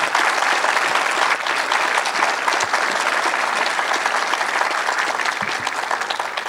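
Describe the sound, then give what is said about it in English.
An audience at a live-recorded panel conversation claps steadily for the panelists for several seconds, a dense, loud wash of many hands with no pauses, easing slightly toward the end. “So big round of applause for our panelists today.”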